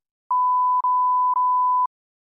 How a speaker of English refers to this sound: So we're going to beep out his name, but will you say his full name for me?